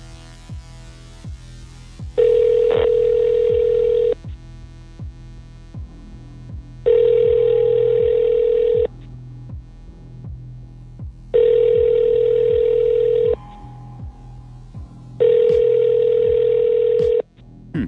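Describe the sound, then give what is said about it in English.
Ringback tone of an outgoing phone call placed live, which goes unanswered with no answering machine: four steady, mid-pitched rings, each about two seconds, separated by pauses, over a low rhythmic pulsing hum. No one speaks. “It's weird because there's no answering machine. Almost suggests that they're on the other line or something.”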